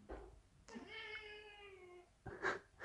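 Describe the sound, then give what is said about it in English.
A hungry cat lets out one long, drawn-out meow with a steady harmonic tone, followed by a shorter, sharper cry; fairly clear, with no talking. “He just meows kind of the same way.”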